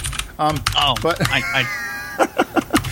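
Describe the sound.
Rapid clicking keystrokes from a mechanical keyboard, close and fairly loud, running under someone talking and getting sharper and more distinct toward the end.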